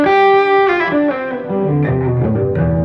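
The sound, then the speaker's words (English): A distorted electric guitar, played through a distortion pedal placed before a volume pedal, plays a loud, sustained melodic line with thick, buzzing harmonics, notes sliding and shifting over a few seconds with no voices. “And I only have it set up like this because the distortion should be before the volume pedal, of mm-hmm. course, to get the same degree of distortion mm-hmm.”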